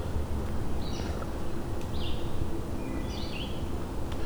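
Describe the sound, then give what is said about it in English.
A wood thrush sings three short, fluty phrases spaced about a second apart, faint against a steady rushing background of wind or water, in woods with old tulip trees, hemlocks, maples and oaks. “You might find wood thrush back here, which they have a couple sets of territories. I'm hearing a couple singing right now.”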